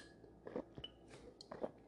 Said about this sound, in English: Give me one second. I'm going to take a sip of the Bev Welch's.